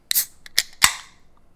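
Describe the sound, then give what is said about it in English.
A can of a drink with notes of pineapple, mango and tangerine being cracked open: a few sharp clicks, then a louder snapping pop followed by a short fizzing hiss that fades away, with no one talking. “So, cracking it open.”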